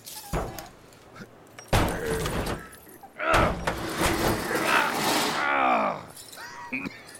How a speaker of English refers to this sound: There's a tire iron in the rig. Hold on. Let's pry back the door on the hinge. It looks like it's about to fall off anyway.